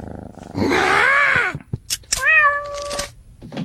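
A house cat meows twice, loud: a long, rising-and-falling yowl, a short pause with faint clicks, then a second steadier meow that trails off.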